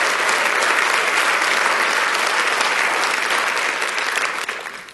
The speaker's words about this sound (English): You see, we clap and I'm thankful. Thank you for celebrating that.